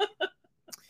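coughing

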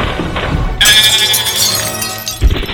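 window glass breaking

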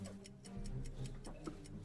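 ticking clock sound effect

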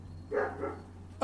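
neighbor's dogs barking

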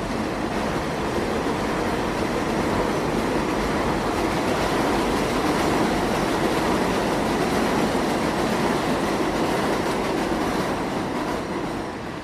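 elevated train passing

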